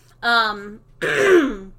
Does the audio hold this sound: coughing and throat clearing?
yes